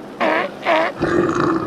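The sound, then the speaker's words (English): A hungry polar bear chasing a seal on the Arctic polar ice cap growls in three rough bursts: two short, harsh grunts followed by a longer, lower rumbling growl, loud and with no talking. “And thirdly, through my binoculars, I can make out a hungry polar bear chasing a seal.”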